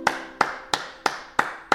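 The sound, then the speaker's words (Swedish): Six sharp hand claps in a steady, even rhythm, about three per second, each a crisp bright snap with a short ringing tail, with no voices. “Den här applåden är faktiskt sett över alla klapparna som har delats ut.”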